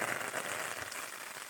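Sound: rain falling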